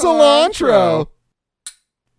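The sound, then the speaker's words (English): A drawn-out, tonal vocal exclamation fades, then after a pause comes a single short, bright clink of glasses touching in a toast, ringing briefly on its own. “Listen, or revelers, if you're drinking along with us, raise your glasses.”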